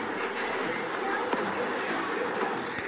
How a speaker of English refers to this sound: You hear rain? What else do you hear?